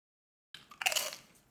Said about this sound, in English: What you munching? Oh, wait, you're eating Tostitos.